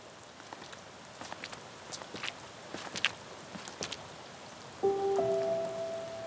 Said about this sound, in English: It was kind of a rainy day on May 31st when we were scheduled to meet with our daughter and her husband.